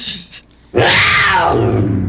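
A single loud coyote howl bursts in after a brief quiet moment, rising and then wavering downward in a long, harmonic cry, unaccompanied by voices.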